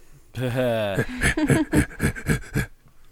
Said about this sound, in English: You're heavy breathing.